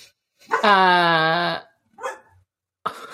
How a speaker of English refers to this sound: Frankie, quiet. Sorry, Frankie's going to be barking.